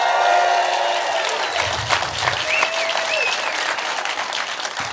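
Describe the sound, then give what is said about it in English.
Steady applause from a studio audience at a live recording of Bulletproof Radio in Chicago, a dense wash of clapping that holds at an even, fairly loud level for the whole stretch, with a few faint whoops rising above it. “This is an episode of Bulletproof Radio, if you're listening in your car, that we're recording live in Chicago, which is a fantastic thing because you'll hear the studio audience, which is awesome.”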